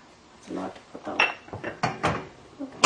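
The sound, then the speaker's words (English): A metal pot of water clanks and knocks as it is handled and set down on a stove to heat the water for boiling pasta, a series of irregular clattering hits and scrapes ending in a sharper clank. “Water, I'm just going to heat up my water, and a little bit of olive oil, just a little bit.”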